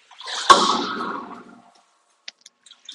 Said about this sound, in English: Excuse me, I have my head inside this tank here, so there's some splashing and some banging.